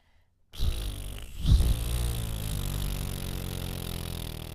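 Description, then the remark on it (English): After a brief silence, a person does a bumblebee breath exercise, bringing the lips together and blowing quickly through pursed lips, making a steady, low, buzzing lip vibration like a bee that holds for about four seconds, fairly loud, with no talking. “And you bring the lips together and then really quickly blow through the lips while they're pursed.”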